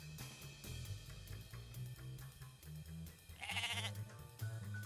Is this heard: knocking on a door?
no